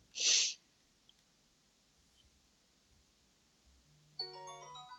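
A game's countdown timer alert signalling players to stop their pitch: after a short, loud breathy burst and a quiet stretch, a bright electronic ringing chime with layered tones and a low hum starts near the end and keeps sounding.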